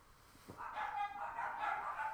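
Dogs barking in quick, high-pitched yips and whiny bursts that run together for a couple of seconds, fairly faint, with no one talking.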